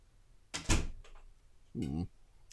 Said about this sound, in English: Don't say, yeah, I'm going to fucking close my door